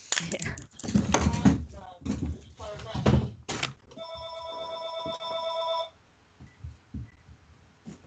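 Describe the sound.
A man speaks, then an old-style telephone bell rings loudly for about two seconds, a continuous metallic jangle that stops abruptly as the phone is silenced, followed by quiet room noise.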